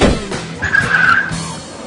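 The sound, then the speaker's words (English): A car revs and peels away with a loud, screeching tire squeal lasting under a second, over a rumbling engine. No one speaks. “and Eugene, that means I'm old enough to drive, right? Get in the car!”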